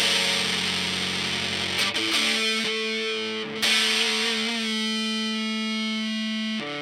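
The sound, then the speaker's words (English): A Strat-style electric guitar with three single-coil pickups and a five-way switch, played through heavy distortion, holding thick, buzzing sustained notes that change pitch a few times, loud and steady throughout with no talking. “It looks to me, that guitar looks like a Strat, but it's got a weird, almost like a Mosrite vibe to it.”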